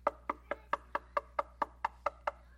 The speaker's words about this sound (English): When you're at somebody's house and you're knocking and they don't come to the door, but you know they're in there, what do you do next?